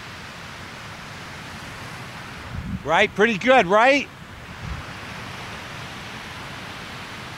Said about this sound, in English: Why not just listen to the sound of the waves?